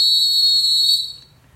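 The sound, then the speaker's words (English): A single loud, shrill whistle blast, used as a segment sound effect, held steady for about a second before cutting off, with a faint low rumble underneath and no voices. “It's time for blow the whistle.”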